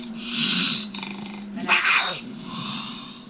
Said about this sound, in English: He says the most misunderstood sound is the infamous mountain lion scream. it's a female in heat. Not, as many people think, the sound of an angry, hungry male about to attack.